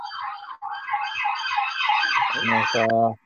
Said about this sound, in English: Weekly sirens. Yeah. It's gone.